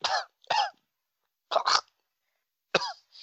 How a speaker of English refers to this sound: So go ahead and try to talk while you're coughing.